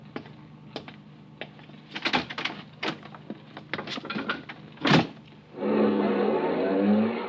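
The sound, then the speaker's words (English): Clicks and handling noises lead to a solid car door slam outside the Northern Hotel, then the car, carrying five men, starts up and pulls away, its loud motor hum rising steadily. No one speaks. “And then a car drove up. 2 men in the front seat, 3 in the back.”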